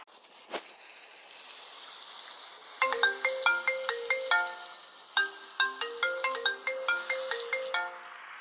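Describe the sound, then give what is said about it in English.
A melodic phone ringtone for an incoming call plays a quick series of bright, bell-like notes in two repeating phrases, starting after a soft click and background hiss, clear with no voices. “I was getting really pissed off at these annoying phone calls. Finally, I answered.”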